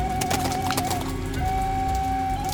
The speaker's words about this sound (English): The horse passes the watchers.